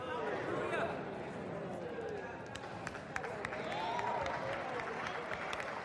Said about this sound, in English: People are applauding that. Your giving is a response to my ability to take care of you. And everyone's clapping. And they're clapping because they're accepting that as being literally the words of God.